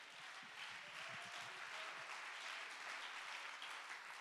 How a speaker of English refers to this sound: Let's clap our hands and give God the praise.